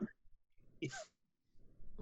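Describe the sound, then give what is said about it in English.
A person makes a short, harsh hacking burst with a sharp exhale, like imitating a cat coughing up a hairball, followed by low muffled vocal noise. “coughs up a hairball.”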